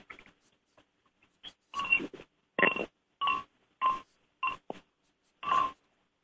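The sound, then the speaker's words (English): Two fishing rod handles banged together about seven times at an uneven pace, each knock a short, hollow clack with a brief ringing tone, fairly loud against silence. “I'm going to lay down the phone and listen to them as I bang them together, and tell me what you think about the sensitivity of these over cork.”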